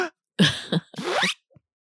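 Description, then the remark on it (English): A voice imitates a zipper with a quick sucked-in breath: a short raspy burst, a tiny click, then a longer rising, buzzy zip, fairly loud and with no talking over it. “And a lot of the noises that I make, they're actually taking a breath in. Yeah. We just don't see it. Yeah. People just don't recognize that. But yeah. Like the zipper noise”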